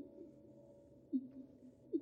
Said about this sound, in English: This is a recording of a fin whale song. It's been sped up a bit so we can hear it properly. I'll play that for you now.